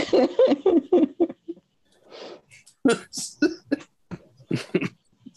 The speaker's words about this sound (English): I'm trying to contain this cough, goddammit.